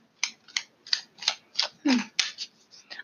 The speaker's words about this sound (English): So, I'm shuffling the Modern Witches Tarot.